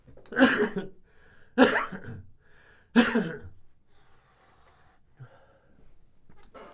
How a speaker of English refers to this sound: I got to sneeze 1 second.